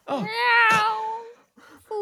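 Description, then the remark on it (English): A cat lets out a long, wavering meow, loud, followed after a short pause by a quieter, briefer mew. “turns into a cat and runs away.”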